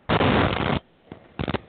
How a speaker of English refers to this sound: we came to the conclusion it's your line, because as you hung up, everything went back completely clear. And now that you come back on, the static is back again.